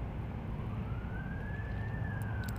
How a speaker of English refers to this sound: Well, something serious must be going on, because that's like the third or fourth ambulance truck, fire truck that has gone by.